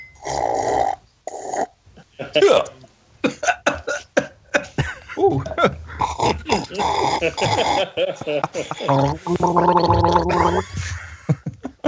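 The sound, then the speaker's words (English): Someone gargles a mouthful of expensive Maui drink during a New Year toast, in a series of loud, wet, rattling bursts, ending in a long, steady, throaty gurgle with a voiced hum behind it. “Sorry, that's so rude, isn't it, to gargle such expensive Maui?”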